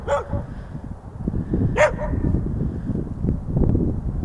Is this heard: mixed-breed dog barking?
yes